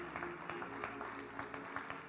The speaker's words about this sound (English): Let's clap our hands to the Lord for that. Praise God.